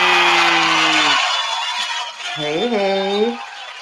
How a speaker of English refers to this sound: Give it up one time. Yes, indeed. And please keep those applause coming because my beautiful co-host has joined me again at the perfect time.